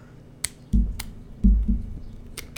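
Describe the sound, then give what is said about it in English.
A twist-off plastic cork pops out of a bottle with a few sharp, snappy clicks, mixed with several dull low thumps of handling, all fairly quiet and with no talking. “Oh yeah, you want to hear the cork pop out of this bottle?”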